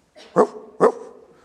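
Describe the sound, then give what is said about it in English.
Two loud barks about half a second apart, each a sharp burst that trails off into a low lingering rumble, with no talking around them. “Revival is not emotional excitement that leaves a congregation in disarray and chaos, leaving them doing things like barking at one another.”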